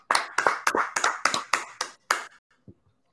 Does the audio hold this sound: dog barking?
no